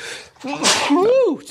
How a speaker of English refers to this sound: I don't think we have a filter for sneezes. It came out of nowhere. That did come out of nowhere.